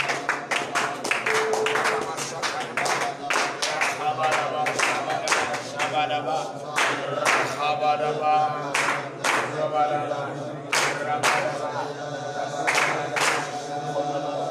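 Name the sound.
audience clapping hands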